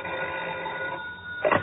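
A telephone bell rings steadily in a dressing room in a sustained, metallic trill, fairly loud, ending in a brief louder clatter near the end. No one speaks.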